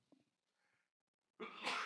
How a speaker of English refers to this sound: Hang on, am I going to sneeze?